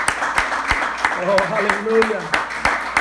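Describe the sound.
An audience at a church service claps for the Lord Jesus Christ in a steady, rhythmic beat, sharp claps landing about three times a second, with voices calling out and talking over the clapping throughout.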